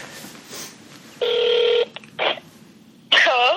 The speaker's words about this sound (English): You're so excited that you say hello before the phone rings.